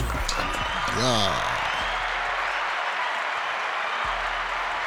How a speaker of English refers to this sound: It's one of my favorite kind of claps. I like the other claps, too.